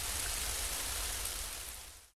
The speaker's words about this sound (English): They share a passionate kiss as rain comes down.